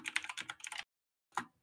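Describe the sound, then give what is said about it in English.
Quick, uneven keystrokes on a computer keyboard in a dense burst while live tweeting, then a pause and one last clack. No one speaks. “Guys, we're live tweeting right now.”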